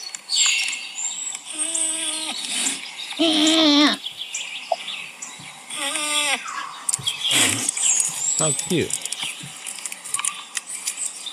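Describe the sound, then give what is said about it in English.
A busy chorus of birds calling and chirping, with high trills and sharp whistles overlapping nonstop, plus a few louder, harsher squawking calls. No one speaks. “Those are birds. Those are beautiful birds.”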